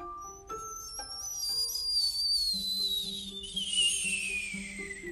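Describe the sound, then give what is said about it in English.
A shrill, high-pitched whistling scream slides slowly downward in pitch for several seconds, sustained and piercing, with low steady tones droning underneath. “There was like a whistling, like a screaming sound.”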